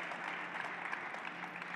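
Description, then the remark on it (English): A crowd applauds steadily, a dense wash of many hands clapping at an even, moderate loudness with no pauses and no voices standing out. “Go ahead and clap”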